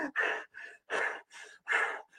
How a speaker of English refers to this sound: So my heart rate is 160 beats per minute. Yes, Samantha, a lot of heavy breathing videos.